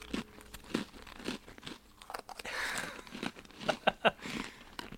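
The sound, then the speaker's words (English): Crunchy snacks being chewed during a timed eating challenge, several in the mouth at once, in rapid, irregular bursts of sharp crackling, with a few louder crunches near the end and a brief stretch of rustling crinkle in the middle. “They're crunchy, aren't they?”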